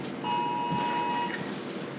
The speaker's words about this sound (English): Yeah, that's a flooding emergency alert. You need to silence that.